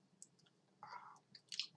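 Wet ASMR mouth noises and soft chewing into a microphone, with small clicks and smacks building into a louder, crisp burst near the end. No one speaks.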